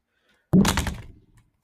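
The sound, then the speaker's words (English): A single heavy thud of a person falling out of a chair onto the floor hits suddenly, then rattles and fades over about a second into silence. “That was just me falling out of my chair.”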